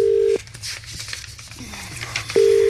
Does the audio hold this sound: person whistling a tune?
no